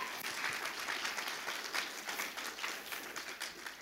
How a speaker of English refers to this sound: Are you guys catching this today? Give Jesus a good hand clap. Amen.